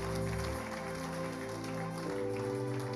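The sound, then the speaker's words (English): A church audience claps steadily for the Lord as they take their seats, about three seconds of dense applause over sustained keyboard chords that shift pitch twice. No one speaks. “If you are happy I am in your midst and that Jesus is here, give the Lord the biggest clap as you take your seat.”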